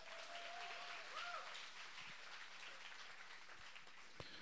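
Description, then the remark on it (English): An audience claps a courtesy clap in a steady, dense wash of applause that holds evenly for several seconds, moderately loud, with no talking over it. “If you kind of like that, or if you'd give me a courtesy clap, would you put your hands together?”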